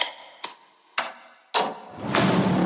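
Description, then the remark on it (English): Four sharp, loud switch clicks snap at uneven intervals, each ringing out briefly, before a broad humming whir rises and holds steady underneath, as Han Solo flicks cockpit switches turning on the Falcon in a trailer. No one speaks. “We get some switches clicking and a lot of Han Solo hand work there.”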